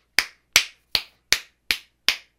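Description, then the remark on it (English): A fist smacks into an open palm six times as a sound effect, in a steady, quick rhythm, each hit a sharp, crisp slap with a short tail, with no talking. “punching his hand for the sound effect.”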